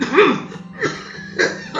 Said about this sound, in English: A loud coughing spell begins, the uncontrollable hacking echoing inside the sanctuary. The worshippers do their best, but they fear that each cough could be Bishop Francis Asbury's last.